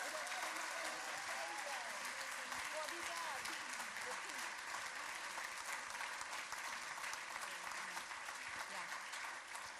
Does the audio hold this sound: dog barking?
no